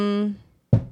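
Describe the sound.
A voice trails off, then after a brief pause comes a single dull, solid thump as a cat named Titus hits its head against a table while trying to jump up, fairly loud, fading quickly.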